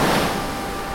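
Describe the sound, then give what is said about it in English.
A steady, hissing wash of ocean water rushing over a pebbly shore as the tide rolls in at Marblehead, even in level, with a slightly fuller surge at the start and no voices. “And at night, when the tide rolls against the Marblehead shore, the dead whisper their secrets, soft as water gliding over ocean-worn pebbles.”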